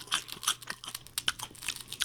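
Loud crunching and chomping, a rapid irregular series of crisp bites and chews on a brittle barbecue-and-bacon-flavoured snack with a barbecue coating, with no voices.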